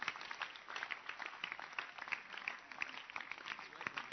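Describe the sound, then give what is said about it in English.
An audience claps steadily for about four seconds to congratulate the Basanta leaders, regional directors and center leaders during a church message, a dense, even patter of many hands at moderate loudness with no clear break or rhythm. “Help me congratulate Basanta leaders who are doing nothing, but today they did something small. Clap for them.”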